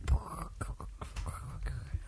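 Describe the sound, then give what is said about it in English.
A voice mimics a crackling campfire with breathy, hissing mouth noise and a scatter of irregular pops and clicks, fairly quiet, lasting about two seconds. “We should put campfire noises in.”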